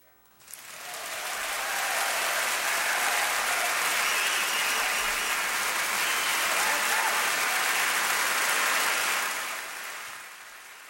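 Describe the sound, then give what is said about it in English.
Sustained audience applause, a dense wash of clapping that swells in quickly, holds steady for several seconds at full strength, then tapers off near the end. “Yeah, well-deserved applause there.”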